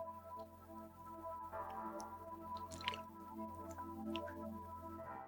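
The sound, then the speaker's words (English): Someone drinks from a water bottle, with soft wet squishes and swallowing sounds over a steady low hum, no one speaking. “Just going to grab a water.”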